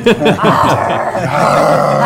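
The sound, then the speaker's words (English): A person imitates a growl for a character in a tabletop role-playing game, low and raspy for about two seconds, the rumbling voice rising and falling in short pulses at first, then holding a steady, gravelly snarl. “I'm growling.”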